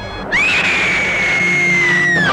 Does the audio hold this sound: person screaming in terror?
yes